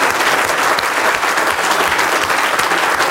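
A large audience at the start of a scientific symposium applauds to thank an honoree for his work in science, with dense, sustained clapping that stays loud and even throughout, forming a continuous wash of hand claps with no speech.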